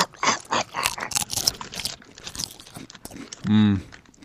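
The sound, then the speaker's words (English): Loud crunching as a crisp Gatorade snack is bitten and chewed in quick irregular bursts, followed by a short, sustained vocal sound near the end. “This is so crunchy, this Gatorade.”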